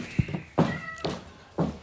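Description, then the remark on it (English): A cat named Johnny Rotten, being put out, meows in a few short, loud bursts, one a drawn-out tonal yowl, with brief bumps between them and no one talking. “We need his cat ejected.”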